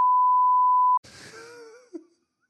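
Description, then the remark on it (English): A loud, steady censor bleep holds for about a second and cuts off abruptly, followed by a brief drawn-out groaning vocal sound that trails away into silence. “We're going to beep it.”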